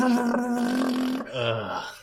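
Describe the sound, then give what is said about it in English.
A voice imitates a loud, modified car engine with a sustained buzzy drone that holds steady, then drops into a lower, rougher rumble for about two seconds. “I spent $15,000 on a thing that makes my car go...”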